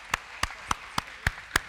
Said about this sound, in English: Thank you all. One last round of applause.